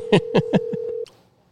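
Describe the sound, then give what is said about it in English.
A steady electronic phone tone hums while someone dials a call, with about five quick keypad presses landing loudly in an even rhythm, before the tone cuts off abruptly. No one speaks. “I'm finna get somebody on this phone.”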